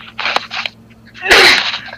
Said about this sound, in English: Excuse me. I just had to sneeze.